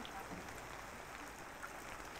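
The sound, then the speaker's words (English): Soft, steady rain patters outdoors with a slight wind in the air, a dense hiss of countless tiny drops with no distinct individual hits, heard at a low, even level throughout with no voices present. “You can all now hear the sound of the rain pattering outside, and you see that there's a slight wind in the air”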